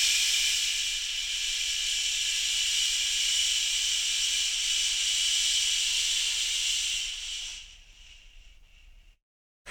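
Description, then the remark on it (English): During a breathing exercise, a long, slow exhaling breath, breathed out after dropping the diaphragm, hisses out steadily for about seven seconds, then tapers off and fades into silence. No one speaks. “Drop the diaphragm, breathe out again.”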